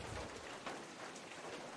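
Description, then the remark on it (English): Steady rain hisses down in a dense, even wash, a continuous soft patter with no pauses, fairly quiet and heard alone without voices. “Well, it's raining.”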